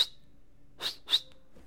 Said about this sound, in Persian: گاهی برای خودت سوت بزن. حیف که سوت زیاد بلد نیستم بزنم. بلدم دیگه، چی جوری میکنم؟ سخت میزنم.